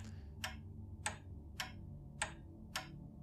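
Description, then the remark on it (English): A novelty chicken clock ticks steadily, five crisp clicks spaced about half a second apart over a low, constant hum, with no one speaking. “you hear like there's a clock clicking, like click, click, tick, ticking.”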